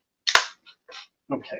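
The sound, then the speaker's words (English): A sharp, loud plastic snap rings out, followed by a couple of softer clicks and a quick rattling cluster of clacks as plastic gun parts are pressed together. No one speaks. “And let me just slap this together correctly.”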